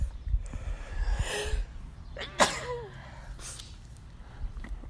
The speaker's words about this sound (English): Excuse me. I had to sneeze.